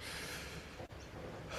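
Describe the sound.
A sharp, shallow inhale into the top of the chest as a person tries to take a deep breath with one hand on the chest and one on the belly; a steady airy hiss lasting over a second with a brief break midway. No one speaks.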